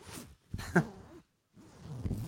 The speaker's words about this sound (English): What was that? My mother heard that sound. I'm not gonna think about it. Is that another zipper? Is that another zipper unzipping?